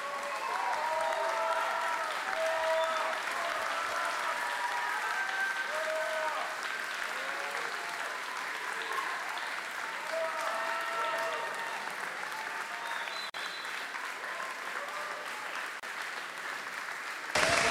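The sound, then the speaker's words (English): Steady audience applause and cheering for an artist at Friday Live on 95bFM, sustained for nearly eighteen seconds, a dense wash of clapping with scattered whoops and voices mixed in, holding at a constant loud level throughout. “So …, everyone, one more time, give it up.”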